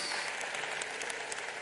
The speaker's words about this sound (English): Let's give our youth a hand clap. Praise Jesus.